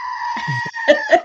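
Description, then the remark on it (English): A brief, loud bleating scream from a novelty screaming goat toy, harsh and nasal with a wavering, strained tone that rises into two sharper bursts before cutting off. “So yeah, Michelle's got the screaming goat. Go ahead. I saw you grab it.”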